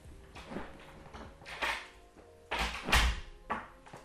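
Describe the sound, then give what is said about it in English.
A door is pushed shut with a dull, solid thump near the end of a few seconds of shuffling and handling noises, moderately loud. “Can you close the door?”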